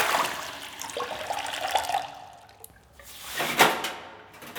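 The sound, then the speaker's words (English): Water runs and splashes into a bathroom sink for a couple of seconds as someone splashes water over their face, fades out, then a second brief gush of splashing follows, with no voices. “No towels in the dispenser, and I just splashed water all over my face.”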